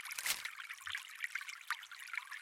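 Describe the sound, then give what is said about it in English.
Water trickles and splashes steadily in a small, clear stream with brown silt and fallen leaves on its bottom under a green tree canopy, a continuous bright babbling with a brief louder gush near the start, moderately quiet, with no voices. “Water falling. Nothing as dramatic as a large waterfall.”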